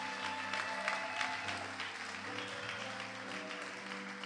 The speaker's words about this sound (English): Wow, wow, wow. Come on, give Jesus one more big hand clap.